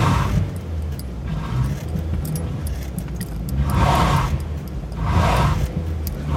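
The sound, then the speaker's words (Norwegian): A car engine revs in repeated surges, rising and falling about every two seconds as the driver rocks the car stuck in a ditch in a forest, with a steady low rumble and faint rattling underneath. “Prøver å vugge med bilen.”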